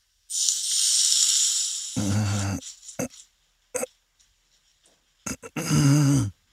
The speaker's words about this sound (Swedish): man ska hälla oljan över vitlöken. Ja, det är den, då skjuts den.